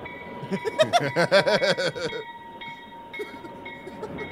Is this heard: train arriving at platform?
yes